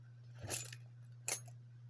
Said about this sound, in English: He grabs some car keys from a hodgepodge of them.